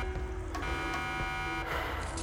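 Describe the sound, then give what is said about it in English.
A steady electronic alarm tone drones with bright harmonics, swelling in periodic pulses every half second or so against a low rumble, moderately quiet and without any voices. “The sound of the alarms pulsated with his heart.”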